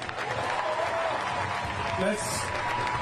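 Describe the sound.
An audience applauds a family steadily for about three seconds, a dense, even wash of clapping at constant loudness, with a few faint voices or calls mixed into the noise.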